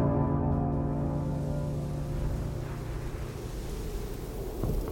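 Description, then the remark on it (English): Strong wind roars steadily outside a window for the whole stretch, swaying the trees hard: a deep low rumble with a steady hum beneath it and a slight swell toward the end. No one speaks. “It's just wind.”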